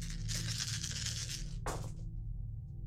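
A handful of about 11 dice, rolled in a tabletop game, rattles steadily for over a second, then spills out in one sharp clatter before settling into quiet. The sound is fairly loud, with no talking.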